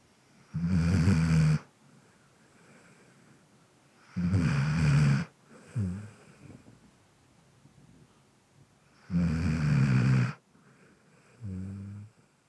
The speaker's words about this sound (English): This is Ethel snoring.